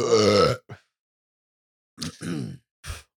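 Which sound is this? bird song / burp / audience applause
burp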